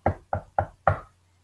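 Four solid knocks on a door, three evenly spaced and a slightly heavier fourth after a short pause, clear with a faint low hum underneath.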